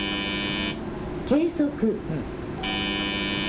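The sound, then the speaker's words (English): A loud, steady electronic alarm buzzer from an automated earthquake early warning system in a control center, sounding a false alarm, drones at the start, cuts out while a man speaks briefly, then resumes at the same harsh, continuous pitch. “As … talks, the automated system emits a warning.”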